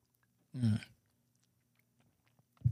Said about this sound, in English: Sipping on some Bacardi right now.